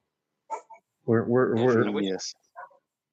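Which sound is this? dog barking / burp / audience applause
dog barking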